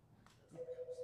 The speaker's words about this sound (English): The phone never rings here. No one ever calls them. The call is coming from inside. It's coming from the basement.